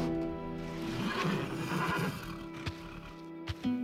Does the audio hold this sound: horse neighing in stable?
yes